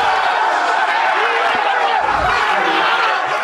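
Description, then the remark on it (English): The Minnesota Vikings team in their locker room erupts in loud, sustained cheering and shouting after quarterback Kirk Cousins screams his signature "You like that?"; overlapping yells and whoops form a dense roar that stays at full volume for the whole stretch. “The entire locker room comes undone as Kirk Cousins screamed what has become his signature, you like that part 2.”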